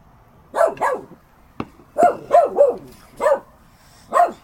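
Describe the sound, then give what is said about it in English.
A dog barks about seven times in short, irregular bursts, some in quick pairs and triplets, fairly loud, with a single sharp click between them and no talking. “Can we shoot the dog?”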